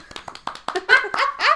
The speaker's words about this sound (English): Round of applause. Yeah, please.